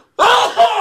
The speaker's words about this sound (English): Gesundheit.